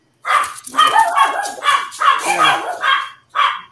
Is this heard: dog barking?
yes